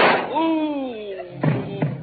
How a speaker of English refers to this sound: Ooh. Griffith, you shot him. No, Gwen, I didn't shoot him. Well, somebody did. I wonder who.